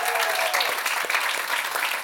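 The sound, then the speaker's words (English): A short burst of steady, dense clapping from a small group, congratulating someone on a book being published, sustained at even loudness throughout with no voices over it. “Congratulations, round of applause.”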